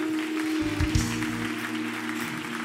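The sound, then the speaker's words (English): A church audience gives a hand clap to honor the ministry, the pastor, the bishop and their families, many overlapping claps blending into a dense, continuous patter over a low background hum. “Give them a hand clap tonight.”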